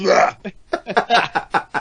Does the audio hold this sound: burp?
yes